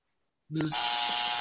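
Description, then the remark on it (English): During a Moon Knight trivia quiz, after a moment of silence, a quiz buzzer sounds suddenly: a brief low electronic tone jumps into a loud, harsh, sustained buzz that holds steady to the end. “Okay, guys, hands on the buzzer or wave, do anything, call out.”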